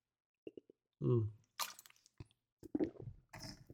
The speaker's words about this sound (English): In case you're wondering, am I drinking? Yeah. But it's not alcohol, it's again water.